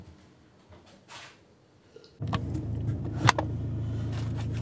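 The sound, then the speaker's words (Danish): From inside a car being driven to a recording session, a steady low engine and road rumble starts up after a couple of seconds of quiet shuffling, with a brief click or knock partway through the drive. “Så sidder jeg i bilen og er på vej på optagelse.”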